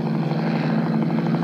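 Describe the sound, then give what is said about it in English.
An army helicopter drones steadily overhead, its rotor producing a loud, continuous thumping hum with a strong low-pitched throb and no voices. “What's that army helicopter doing here?”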